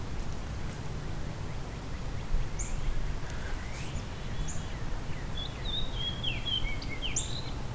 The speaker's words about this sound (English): That's the fox sparrow song.